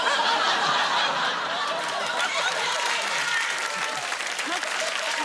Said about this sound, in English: I can see married men in the audience clapping that.